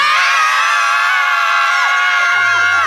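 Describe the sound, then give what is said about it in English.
A group of women let out a long, loud primal scream together on a count of three, many high voices overlapping in one sustained cry that holds for a few seconds before trailing off. “Well, primal screaming is the answer.”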